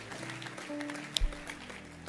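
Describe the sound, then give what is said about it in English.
A worship crowd claps their hands for Jesus in a steady, dense wash of applause, with one sharper bang standing out partway through. No one speaks over it. “Clap Hallelujah. Your hands for Jesus.”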